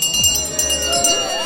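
A last call bell rings out with a bright, sustained metallic tone that hangs over a low murmur of crowd noise, with a few soft clinks mixed in.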